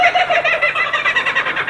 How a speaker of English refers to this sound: And you'll be happy to know that was a real kookaburra.